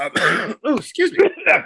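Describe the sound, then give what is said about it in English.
A loud bout of phlegmy throat clearing breaking into several rough, gravelly coughs, about four bursts in quick succession with brief gaps between them. “Starting with death, phlegm, and choking. COVID! COVID cough!”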